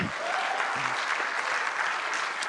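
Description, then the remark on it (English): An audience in a church claps steadily, a dense wash of many hands at a constant, moderately loud level with no voices over it, filling the whole short stretch. “You guys are clapping at my humility, right?”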